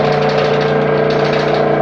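A vacuum suction machine's motor runs steadily during a suction procedure on the inside of the uterus of a patient about 12 weeks pregnant: a loud continuous hum with a low droning tone and a breathy hiss on top, unchanging throughout and with no voices.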